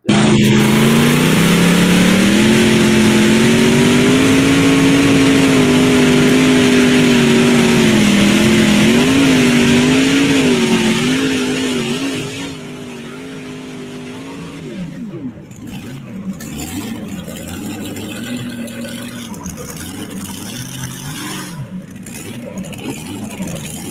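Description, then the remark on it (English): A heavy pulling tractor engine roars and revs loudly at high load for about twelve seconds, pitch wavering, then drops back to a lower rumbling idle with some faint background noise. “Clearly knows how to drive a pulling tractor.”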